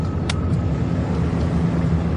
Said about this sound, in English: But gentlemen, you must return to your seats. The plane is about to land.